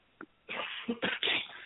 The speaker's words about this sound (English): excuse me, I didn't mean to cough on the line there.